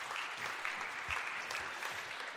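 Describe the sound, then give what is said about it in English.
A crowd applauds steadily for four volunteers coming up to help the speaker, a dense wash of many hands clapping at an even, sustained level with no voices standing out. “Let's give a round of applause to these guys.”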